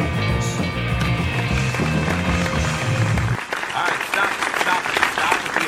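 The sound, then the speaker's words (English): Steady audience applause, a dense wash of many hands clapping that holds at an even level throughout, with low rumbling music or crowd noise underneath in the first half. “You're only supposed to applaud for the winner, dude, and I am the winner.”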